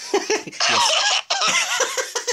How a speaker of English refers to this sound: A COVID cough there.